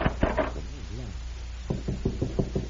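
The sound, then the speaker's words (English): Knuckles rap on a wooden door: a few quick knocks, a short pause with a faint vocal sound, then a steady run of about six firm, evenly spaced knocks. “I'll try this door.”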